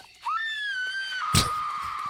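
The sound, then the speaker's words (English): A single long, shrill scream that rises quickly and then holds a steady high pitch for nearly two seconds, loud, with a brief harsh crackle partway through and no talking. “More screaming.”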